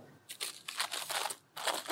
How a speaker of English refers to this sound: We sat in quiet, munching broken biscuits and lemon drizzle cake for a while.